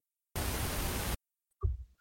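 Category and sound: household object, dice being rolled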